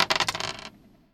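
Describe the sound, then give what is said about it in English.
Dice clatter in a quick burst of sharp, rapid clicks that tumble for about half a second, then settle and fade into quiet, with no voices. “roll those dice.”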